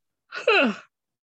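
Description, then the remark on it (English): A single short yawn before 6 o'clock after a night of being up 18 times, a breathy intake sliding into a falling, voiced exhale, with silence around it. “Oh, I don't know why kids have yawning. It's not even 6 o'clock.”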